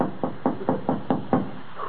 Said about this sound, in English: Shall we knock? Pray do.